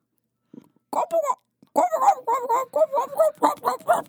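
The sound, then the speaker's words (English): A person's voice imitates a turkey gobble with a short sound, then a rapid string of throaty, warbling bursts. It's fairly loud, and comes out somewhat bark-like. “Try to do your best impression of a turkey.”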